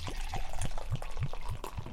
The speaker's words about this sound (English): Yeah, you fill up that cup noodle cup. Fill up my cup here. Yeah.